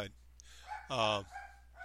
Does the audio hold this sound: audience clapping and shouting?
no